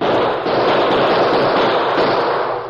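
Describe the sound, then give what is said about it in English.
A loud, dense burst of gunfire from several guns at once as the Lone Ranger and Tonto return the gunfire of unknown assailants, the shots overlapping into a continuous crackling roar for a few seconds with no voices. “Crouched on either side of Pop Hendricks and the photographer, the Lone Ranger and Tonto returned the deadly gunfire of their unknown assailants.”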